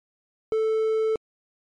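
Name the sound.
beep tone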